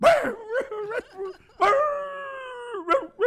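A dog whimpers with a few short, high yelps, then draws out one long, steady whine before a final sharp yip; fairly loud, with no talking.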